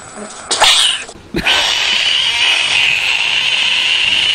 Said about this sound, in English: Just 3 minutes of frogs? Yes, just basically, screaming? Yeah. It's 3 minutes of these frogs screaming.